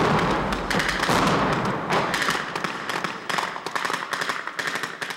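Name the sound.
explosions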